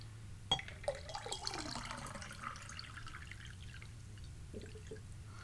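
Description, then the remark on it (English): A cocktail is poured into a pint glass through an ice strainer, leaving no ice in the cup: a sharp clink, then a steady, fairly quiet splashing trickle that tapers off over a low background hum. “I'm going to pour into the glass and, you know, filter the ice out.”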